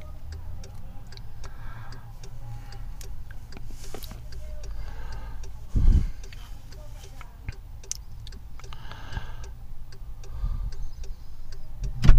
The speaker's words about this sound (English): That clicking noise you can hear is the indicator.